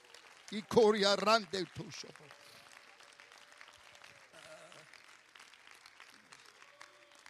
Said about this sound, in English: Somebody ought to clap your hands and praise Him together right now.